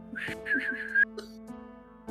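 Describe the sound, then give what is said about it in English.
A person whistles a brief, wavering tune of a few quick notes over a steady low hum, fairly clear, ending with a short chirp. “I whistle. My name.”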